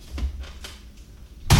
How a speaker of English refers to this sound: Good Lord, you bought it on Blu-ray? What just happened is I just slammed a copy of The Fanatic on Blu-ray on the table. And it looks like a bootleg.